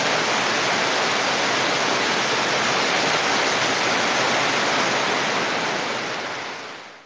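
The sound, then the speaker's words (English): A thunderstorm sound effect: a steady, dense hiss of heavy rainfall with no thunderclaps, holding an even level for several seconds before fading out at the end. No voices. “Thunderstorm.”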